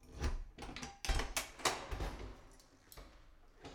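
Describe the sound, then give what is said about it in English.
A closed door to the right of a house's entrance is opened with a quiet series of clicks, knocks and rattles from the latch and handle. It sounds soft, with no voices. “Max heads to the closed door to the right of the entrance.”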